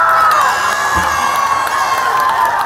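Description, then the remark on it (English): A rugby stadium crowd at the HSBC Canada Women's Sevens Tournament at Starlight Stadium in Langford cheers continuously, a dense roar of many voices with high-pitched shrieks and whoops rising above it, loud and sustained throughout. “This weekend, rugby fans are cheering on the women in Langford at the HSBC Canada Women's Sevens Tournament.”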